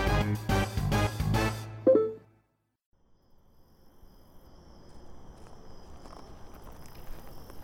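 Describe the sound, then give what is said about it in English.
A short musical phrase ends, a brief pause follows, then steady crunching footsteps of people walking on a countryside gravel road fade in and continue at a walking pace, with a faint insect-like hum above. “You know, it's nice to get out on this gravel road for a walk. It's been a while. Yeah, this is really nice. It's scenic, countryside, gravel under feet.”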